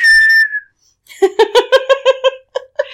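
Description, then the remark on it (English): A short, steady whistle through pursed lips holds one high note for about half a second, then after a brief pause someone breaks into a run of rhythmic, bubbly giggling. “So putting your lips together and blowing while you're standing on a boat will stir up the wind and therefore the seas.”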